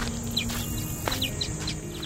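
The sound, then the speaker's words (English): Birds chirping in quick, high, downward-sweeping notes, about eight short calls spread unevenly over two seconds, set against a steady hiss of outdoor background noise and a low hum. “or sounds their loved ones wanted to send inside for them to hear, like baby laughter or bird chirping.”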